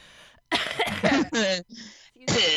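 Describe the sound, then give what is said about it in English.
A fairly loud fit of several harsh coughs in quick succession from someone who has had a cough for about a month, with raspy, voiced straining between bursts and a brief pause before a final cough. “I have had a cough for like a month, and it's really annoying.”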